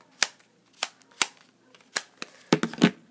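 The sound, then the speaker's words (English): An old Samsung sliding keypad phone snaps open and shut in a series of sharp, crisp plastic clicks, spaced irregularly at first, then a quick flurry of clacks at the end. No one speaks. “I have this old Samsung sliding keypad phone right here.”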